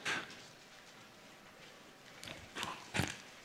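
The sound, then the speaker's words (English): Bible pages turning as people look up John 17 in the New Testament, heard as a few brief, papery swishes and rustles at irregular moments with quiet gaps between them. Fairly soft overall, with no talking. “I like the pages turning. You like the pages turning?”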